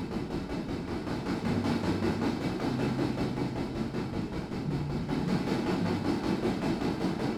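A freight train heading west out of Montauk rolls steadily along the tracks, a loud, continuous rumble with a low droning hum and rattling, clanking noise throughout, without voices.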